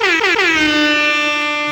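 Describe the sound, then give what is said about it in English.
A loud, brassy air horn blares in a continuous burst, its pitch sliding downward early on before holding steady, like a reggae sound-system horn effect, with no voices. “You got a reggae horn, my friend.”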